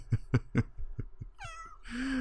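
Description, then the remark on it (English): A small female pet cat meows: a quick run of short chirping calls, then a drawn-out, rising meow ending in a louder, sustained wail, with no one speaking. “Yeah, and I think Gizmo agrees with you. Yeah, Gizmo agrees. Yeah, she does. Our little kitty.”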